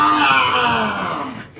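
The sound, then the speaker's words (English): A man's voice lets out a loud, sustained anguished scream, strained, sagging slightly in pitch before tapering off at the end, as massive green flames erupt and swirl around him. “The moment his bolts hit you, you take a deep breath and you point your finger at him, and massive green flames like erupt around him and swirl. You hear him screaming, "Go!”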